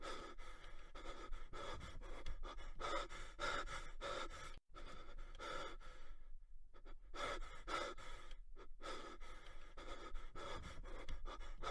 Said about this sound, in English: Now, since you can't change the track while your hands are full, here's some relaxing audio of someone breathing very normally.